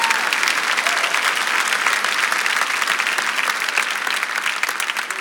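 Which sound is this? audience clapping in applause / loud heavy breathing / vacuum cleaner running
audience clapping in applause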